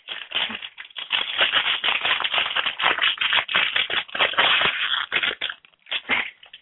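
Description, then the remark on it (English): Tough, crinkly plastic blind-bag packaging of a Crystal Kingdom pony toy being ripped and wrestled open, a dense run of loud crackling, tearing and rustling bursts that continues almost without pause, easing briefly near the end before one last flurry. “At least the plastic is very noisy.”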